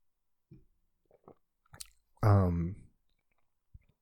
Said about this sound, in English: I'm just gonna take another sip of this wine.